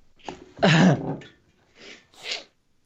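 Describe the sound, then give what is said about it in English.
Loud, close-up sniffling into a microphone by a person who can't breathe through the nose: several sharp nasal sniffs and a throaty snort in an irregular series, with short pauses between them and no talking. “Well, it's good then you fucking sniffle right in front of the mic”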